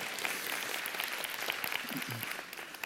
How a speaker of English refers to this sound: That's what Christmas is all about, Charlie Brown. You can clap for that, that's all right.